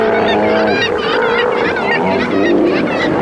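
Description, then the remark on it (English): A loud, continuous chorus of Steller sea lions calling over one another in southeastern Alaska in autumn, with overlapping honking, wavering roars and bleats forming a dense, unbroken din. “Well, today we'll visit with Alaska's stellar sea lions.”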